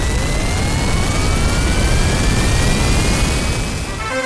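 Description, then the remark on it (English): A jet engine spools up, a loud continuous roar under a whine that climbs steadily in pitch over a few seconds, with no voices. “Okay, let's fire up the BM jet.”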